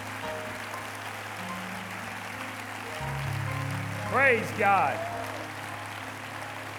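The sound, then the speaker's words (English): A church audience claps steadily throughout, giving a hand clap to God, a dense wash of hand clapping over sustained low musical tones, with a man's voice briefly calling out over it near the end. “Why don't we just give God a great, great, great hand clap?”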